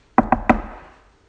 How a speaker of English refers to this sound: JW knocks at the door.